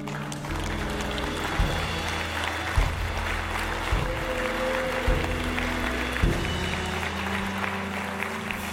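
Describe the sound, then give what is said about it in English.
A church audience claps in a sustained round of applause, a dense, steady patter lasting several seconds while low musical chords shift underneath at a regular pace. “All right, church, can we give a round of applause?”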